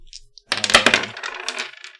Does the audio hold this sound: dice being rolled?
yes